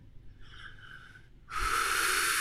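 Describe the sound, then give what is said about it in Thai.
A voice imitates heavy breathing: a soft, wheezy inhale, then a loud, sustained breathy exhale like air being blown straight into the ear. “แบบ เสียงคนเป่าลม เออหายใจลดหูว่า”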